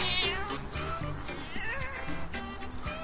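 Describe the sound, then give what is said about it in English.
A neighbor's female cat meows repeatedly in a rough, croaky voice, with a few drawn-out, raspy cries running together over a few seconds and no talking. “My croaky neighbor cat that comes and hangs out with me.”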